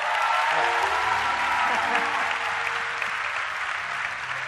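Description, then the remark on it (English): An audience claps steadily throughout, a dense, sustained wash of many hands with no distinct individual claps, staying loud and even for the whole stretch, with faint low tones underneath. “If you are not clapping, you don't have faith. Clap right now.”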